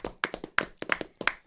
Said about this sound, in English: Commiserations to Liverpool for 97 points. Losers clap.